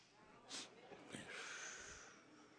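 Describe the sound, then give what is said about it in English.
Someone imitates nasal sniffing: two quick, sharp snorting sniffs followed by a longer, drawn-out breathy snuffle, fairly loud with no words spoken. “You couldn't come to my mother's table sniffing like...”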